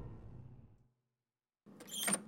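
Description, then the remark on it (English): A low rumble fades into silence, then the door of a downtown apartment is pushed open with a short, fairly loud scraping swish, with no voices. “she rolls her eyes with no explanation and pushes the door open, leading us into a neat little downtown apartment.”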